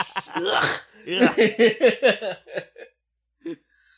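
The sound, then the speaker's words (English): A person loudly imitates sniffling: a long, harsh nasal snort, then a quick run of choppy voiced sniffs, and one last short sniff after a pause, exaggerated. “Doing the J. Remy sniffles”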